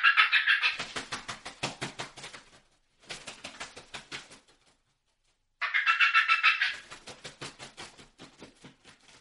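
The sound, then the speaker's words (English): Several turkeys fly down together, with a burst of excited, rapid cackling mixed with wingbeat-like flutters, coming in three bursts separated by brief pauses, loud. “So that right there is a multiple turkey fly down with an excited fly down cackle mixed in.”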